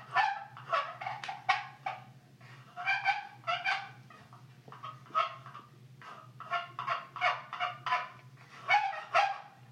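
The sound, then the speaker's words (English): Turkey hen yelps played on the hen side of a box call, a run of short, raspy calls in quick uneven bursts over about ten seconds, fairly loud, with a steady low hum underneath. “so I was going to try the hen side. Maybe it's like something's wrong with the gobble side.”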